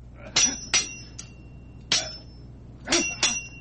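A metallic sword sound effect: about six sharp, ringing clinks in an irregular rhythm, each with a bright high-pitched tone that lingers briefly, over a low steady hum with no talking.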